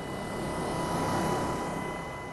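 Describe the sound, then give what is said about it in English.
A Black Hawk helicopter carrying Blinken and Turkish Foreign Minister Mevlüt Çavuşoğlu, flying from İncirlik Air Base over earthquake-hit Hatay province, Turkey: a steady, loud engine drone heard as if from inside the cabin, with a constant roar and faint whining tones that hold unchanged throughout. “travelled in the Black Hawk helicopter with Blinken and Turkish Foreign Minister Mevlüt Çavuşoğlu.”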